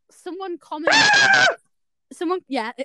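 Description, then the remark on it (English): A person voices a loud, shrill imitation of a screaming sound effect, the one used on a short video of tea being made and a biscuit falling into the tea, lasting about half a second, with short bits of speech just before and after it. “it was just a weird one of me making a cup of tea and the biscuit falling in the tea and it had a screaming sound effect. Yes, I know that sound effect very well.”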